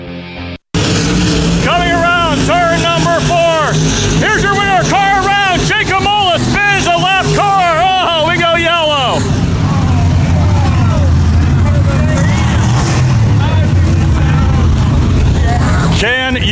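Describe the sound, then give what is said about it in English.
Stock cars roar around Jennerstown Speedway, engines loud, their pitch rising and falling in repeated passes before settling into a dense, continuous rumble of racing traffic. “And weekly five division stock car racing continues every Saturday night through September 19th.”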